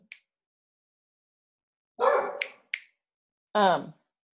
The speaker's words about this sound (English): Oh, and there goes my dog.